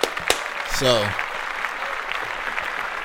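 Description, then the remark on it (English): An audience claps steadily for about three seconds, a dense wash of hand claps, with a brief vocal whoop or cheer rising early on before the applause carries on. “We're going to clap that up.”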